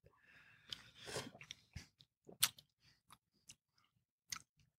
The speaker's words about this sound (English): No, because I've caught you. Eating lemon halves before for fun. Love it.